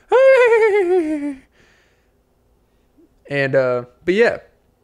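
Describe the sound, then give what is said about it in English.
Coyotes howl outside: one long, wavering cry slides downward in pitch for over a second, then after a pause come two shorter, sharper howls in quick succession. No one speaks. “So, damn, the coyotes are out.”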